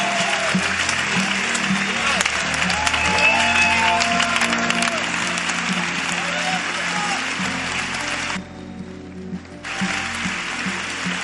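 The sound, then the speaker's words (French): An audience claps steadily for about eleven seconds, a dense, sustained wash of applause with scattered voices and cheers underneath, briefly thinning near the end before swelling again. “Clap for this great book.”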